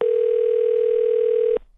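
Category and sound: signal or alarm, telephone dial tone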